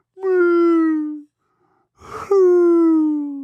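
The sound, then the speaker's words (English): A human voice imitates blue whale song with two long, sustained moaning tones that slowly slide downward in pitch, separated by a short, breathy rasp. “And we look at blue whales, they're like, oh, the songs.”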